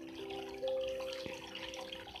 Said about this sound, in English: You hear the water stream keep flowing with you.